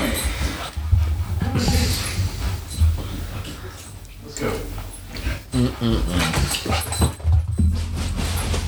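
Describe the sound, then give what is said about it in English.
A dog shuffles and clatters around, with light jangling and a faint whimper mixed into steady background noise while people talk over it. “Yeah, you crazy dog.”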